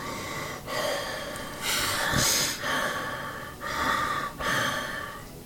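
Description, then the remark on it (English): Heavy, rasping breaths, a steady cycle of loud inhales and exhales repeating about every second with brief gaps between, no speech. “Then a heavy breathing.”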